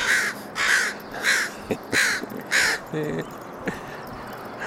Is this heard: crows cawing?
yes